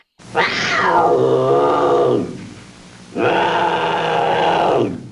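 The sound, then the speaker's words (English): A bobcat lets out two drawn-out, gravelly growling calls, each about two seconds long with a brief pause between them, loud with no one talking. “So they can like chortle. It's almost like a chortle growl bark.”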